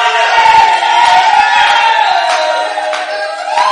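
A large audience shouts together in a loud, sustained roar, many voices blending into a dense wall of cheering and whooping that holds steady throughout without pause.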